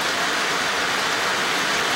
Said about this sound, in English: Excess water from plants and vegetation rises up into the air and transforms into droplets that come down to the earth again as rain.